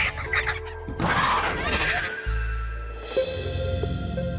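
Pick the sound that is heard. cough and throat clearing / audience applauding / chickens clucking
chickens clucking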